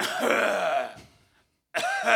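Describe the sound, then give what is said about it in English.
A voice imitates a man's strained coughing and grunting as he pulls a rope exercise machine during a workout: a long, rough, throaty burst, a brief silence, then a second harsh grunt, loud. “He was, like, coughing and grunting and all this shit.”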